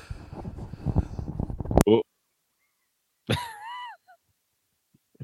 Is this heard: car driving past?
no